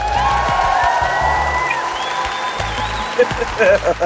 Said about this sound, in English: You know, the clapping cracked me up.